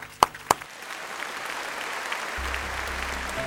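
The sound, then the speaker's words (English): A couple of sharp claps open, then a room full of people breaks into steady, sustained applause that carries on at an even level, with a faint low hum underneath toward the end. “And I think you all deserve an applause for the work that you do.”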